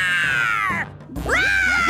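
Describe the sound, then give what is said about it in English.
A child's voice imitates a dinosaur growl: two loud, strained, high-pitched roars separated by a brief pause, the second wavering and breaking up toward the end. “I like dinosaurs because they are big and scary and growl really loud like this.”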